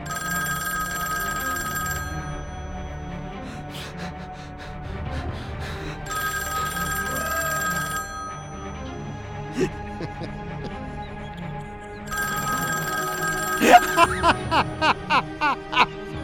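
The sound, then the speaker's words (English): A telephone rings in three two-second bursts with long, even pauses between them, loud over a low murmur of background activity, followed by a quick series of short pulses at the end. “A ringing phone stopped me in my tracks.”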